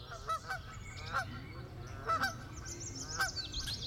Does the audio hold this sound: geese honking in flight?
yes